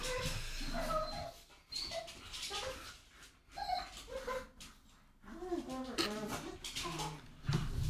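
dogs whimpering and barking

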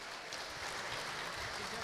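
audience applause

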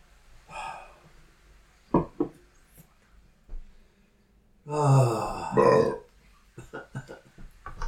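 burp

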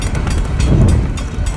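passing train

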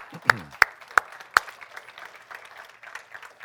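audience applauding

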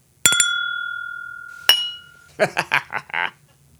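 glasses clinking

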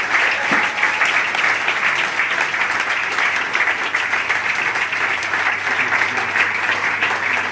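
audience round of applause

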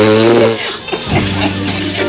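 fart sound effect

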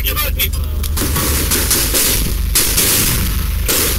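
gunfire

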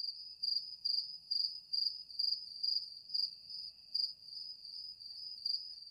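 crickets chirping

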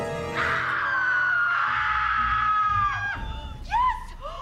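screaming

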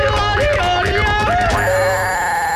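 alarm bell ringing

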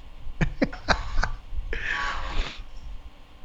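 coughing

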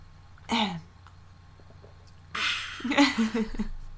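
sipping hot tea

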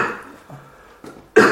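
cough

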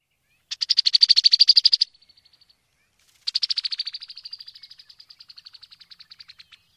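brown-headed cowbird call

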